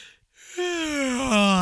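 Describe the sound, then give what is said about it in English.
A short breathy puff, a brief pause, then a long, loud, voiced intake of breath that rasps and slowly sinks in pitch, like a deep gasping inhale. “Take a deep breath there.”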